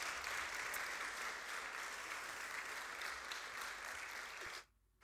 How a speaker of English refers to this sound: Let's give these guys a big cheer.